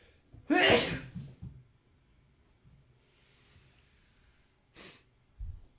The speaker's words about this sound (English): I'm going to sneeze.